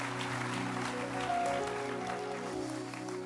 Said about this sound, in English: Give a louder hand clap and then you may be seated.